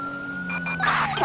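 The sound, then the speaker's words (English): Electronic police siren tones, set to a scan mode that cycles through the tones automatically: a steady high-pitched wail with layered harmonics, interrupted by a couple of short chirps and then a brief rough, noisy burst near the end. No one speaks. “So I also set up on this thing a scan, so we can scan through our tones instead of having to sit there and do it ourselves, which is kind of nice.”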